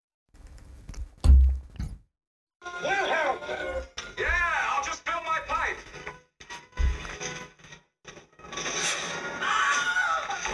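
A dull knock, then the Wilhelm scream sound effect: a man's loud, strained yelp with sharply swooping pitch, repeated in several bursts with brief gaps between them.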